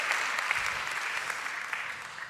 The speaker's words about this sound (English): Oh, you don't have to applaud.